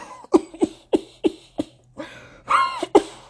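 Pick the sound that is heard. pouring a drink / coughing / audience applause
coughing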